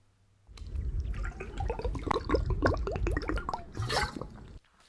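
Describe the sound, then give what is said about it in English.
Someone drinks water from a bottle, with several wet gulps and liquid gurgles running steadily for about four seconds before stopping. “I think I'm going to need some water.”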